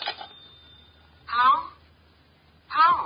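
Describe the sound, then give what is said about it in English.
An old-style telephone rings in two short bursts with a pause between them, fairly loud, against a quiet background hum. “Excuse me, the phone.”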